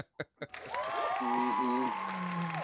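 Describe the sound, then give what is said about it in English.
Two sharp isolated claps, then a sudden, steady wash of audience applause lasting a couple of seconds, with voices whooping and cheering over the clapping. “Hold all your applause to the end.”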